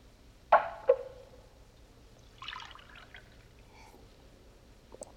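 Two sharp glassy clinks, then a short, light splash of water being poured into a glass for a witness on the stand in a courtroom, fairly quiet, with a faint tap at the very end. No one speaks.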